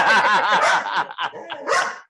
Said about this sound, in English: He hears a dog from outside barking, and so he says that it's okay to bark.